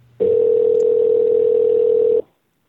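A telephone tone while calling: one loud, steady, low-pitched electronic hum that holds unchanged for about two seconds, then cuts off abruptly into silence. No voices.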